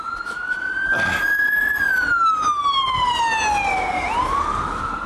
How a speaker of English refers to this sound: It's an ambulance making a bit of progress.